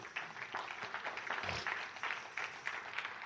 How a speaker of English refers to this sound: take your seats and just clap your hands for Jesus right now